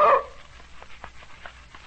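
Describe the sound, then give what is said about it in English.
A dog gives one loud bark right at the start, followed by a few faint, short yips trailing off against quiet background noise. “You like this here dog”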